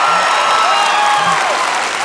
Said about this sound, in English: Will you guys give him a huge round of applause?